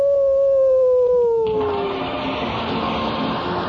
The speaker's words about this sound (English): Oh, there's someone at the door. Why, it's a stray dog. That's my public. Here, doggy, come in.